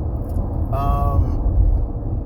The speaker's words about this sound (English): And that's all I'm going to record from the car, man, because it probably sounds like crap. And if you didn't hear anything, I decided not to put it in there.